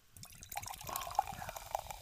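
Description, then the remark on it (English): A freshly opened pale ale, hopped with a hop blend, from Long Live Beer Works, poured into a glass: a steady liquid stream with bright fizzy bubbling and a few sharp clinking drips, building slightly over two seconds with no talking. “Let's pour that in there.”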